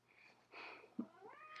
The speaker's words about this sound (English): Do you hear our cat?